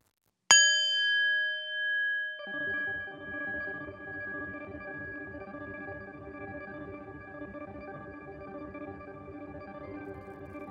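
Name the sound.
meditation bell ringing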